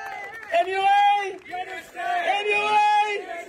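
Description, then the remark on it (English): A crowd at a workers' protest action over the NRMA cheers loudly, many voices shouting together in long sustained calls, in two swells over a few seconds, with a busy, energetic roar underneath. “So yeah, just a big round of applause to these guys, please.”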